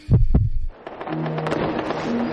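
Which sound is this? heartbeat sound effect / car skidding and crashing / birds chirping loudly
heartbeat sound effect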